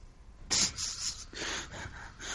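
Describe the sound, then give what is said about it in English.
A person fakes a snore: a loud, raspy snort followed by a couple of softer, breathy rasping pulses, no words spoken. “You're snoring.”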